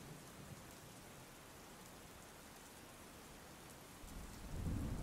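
Steady rain hisses throughout, and near the end a deep, low rumble of thunder swells up beneath it. No voices are heard.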